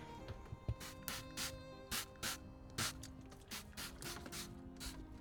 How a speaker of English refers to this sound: There she goes, my floor spray. I love the sound of that. It's like the sound of hairspray. Hairspray for the floor.